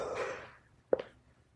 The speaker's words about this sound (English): Guys, I apologize for the yawning. I'm still kind of laying down while I'm doing this because I'm so tired